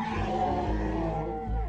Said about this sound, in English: Before we begin, let's acknowledge that there is something here with us. Yes, there it is. The elephant in the podcast.